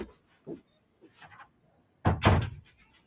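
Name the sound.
door being shut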